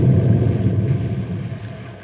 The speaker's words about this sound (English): What was that? Sounded like more dynamite. It must not have all gone off the last time.